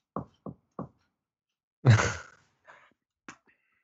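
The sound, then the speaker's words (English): Three sharp, evenly spaced knocks ring out, followed after a pause by a harsh, breathy rumbling noise that fades into a couple of faint clicks, a creature announcing its arrival. “He announces his arrival with a rumbling sound and three sharp knocks.”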